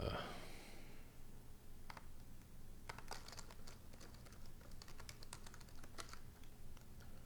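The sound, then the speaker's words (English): Irregular clicks of typing on a computer keyboard in uneven bursts of keystrokes over a steady low background hum, as someone copies a contract address from the browser's URL bar, clicks pool and pastes the address into a token selector window. “I'm copying the contract address out of the top URL bar. I'm clicking pool.”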